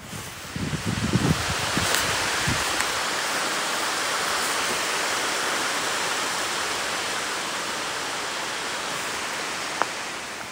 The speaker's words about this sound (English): Oh, can you hear? It's just starting to rain.